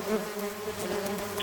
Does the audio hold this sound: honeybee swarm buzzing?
yes